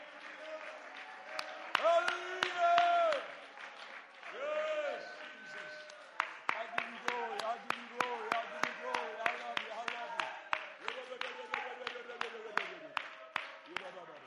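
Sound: audience clapping hands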